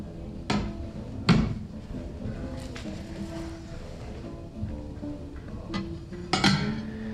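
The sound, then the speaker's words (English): Fiesta Radioactive Red ceramic dishes, discontinued in the 1940s and with uranium in their glaze, clink and knock together as they are handled, with a few sharp, ringing impacts scattered irregularly among softer shuffling sounds. Nobody speaks. “By the way, these dishes are Fiesta Radioactive Red, which were discontinued in the 40s because they actually contain uranium in their glaze.”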